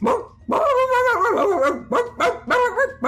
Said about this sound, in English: However, they do appear to be floating in the air, and as they come through this portal, they look at all of you as you are attacking the pillars and begin to bark.